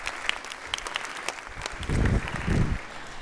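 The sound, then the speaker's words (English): A church audience applauding a man who stands to be thanked, steady dense overlapping claps filling the space for a few seconds, with a few louder bursts of clapping and faint voices underneath. “Would you please stand and let these folks give him a round of applause?”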